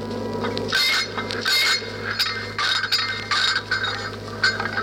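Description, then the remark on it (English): Hundreds of turned-off metal robots, left unsecured aboard a space pirate ship, clink and clank against each other in a steady, irregular series of bright metallic knocks over a constant low mechanical hum, with no voices. “Hundreds of poor turned-off robots just clinking and clanking against each other.”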